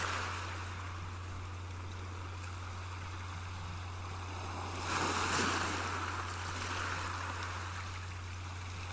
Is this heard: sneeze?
no